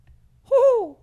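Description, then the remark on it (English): A single short, loud vocal hoot, a human voice imitating an owl, rising slightly and then sliding downward in pitch over about half a second, preceded by a brief quiet pause. “Oh, I thought it was an owl.”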